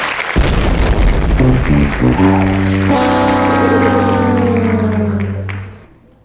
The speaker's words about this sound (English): I don't know whether to applaud or to give the boom explosion sound, like he's blowing up, or to give him the Price is Right sound because he missed it. So yeah, maybe we'll do all.